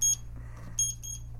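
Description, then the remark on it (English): A timer buzzer goes off in two short, shrill electronic beeps spaced a little over half a second apart, clear against a steady low background hum, with no talking. “Out of time. Out of time. The buzzer.”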